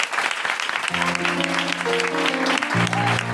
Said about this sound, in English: Please give it up for Rosie Jones, Jessica Foster-Kew, Johnny Cochran, Covino Novino, Let's Let Wing and Pennant's Corner, Mark Hodge on keyboard, you the high mind.